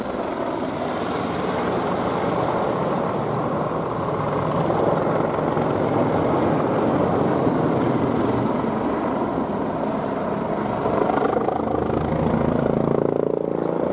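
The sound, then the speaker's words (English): A helicopter flying from Dunfermline towards Larbert at about 9:10 p.m. passes overhead, its rotor blades thudding in a rapid, steady chop beneath a loud engine roar that holds throughout, with no voices. “A helicopter set off 10 minutes before from Dunfermline towards Larbert.”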